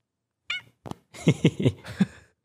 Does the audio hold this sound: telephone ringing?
no